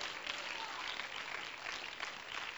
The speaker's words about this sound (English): Come on, let's clap our hands and give praise to the Lord.